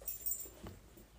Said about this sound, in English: Sorry, my dog is just squealing and squealing and squealing.